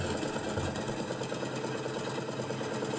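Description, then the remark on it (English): A classic 1970s tractor engine idles steadily, a loud, continuous mechanical chug with a fast rhythmic knocking throughout and no voices. “But yes, today on the podcast, we're going to have the podcast interspersed with tractor sounds.”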